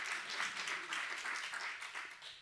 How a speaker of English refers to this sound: Yeah, I can clap for that.